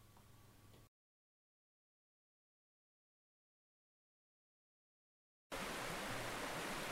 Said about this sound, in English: Almost feel bad talking over that, but I love that low burble sound of the river.